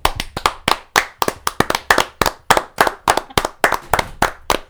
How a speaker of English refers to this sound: Oh, everybody, ready? A round of applause.